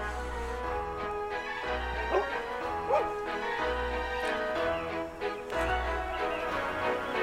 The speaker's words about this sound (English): He just likes it because there's bulldogs and pugs. Look at these cute puppies.